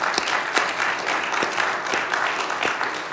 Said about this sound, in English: So can we give a round of applause for them right now?